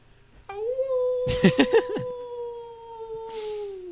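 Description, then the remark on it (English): A human voice mimics a wolf howl: one long, steady, mid-pitched note held for over three seconds, sagging slightly in pitch at the end, with a few short noisy bursts partway through. “Wolf.”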